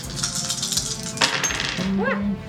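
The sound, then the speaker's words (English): Dice tumble across a hard tabletop in a quick clatter of small clicks and knocks, ending with a short metallic ringing as they settle. “Go ahead and roll.”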